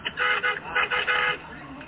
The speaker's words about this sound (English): It is so nuts. It's like, wow, every street is full of cars blowing horns.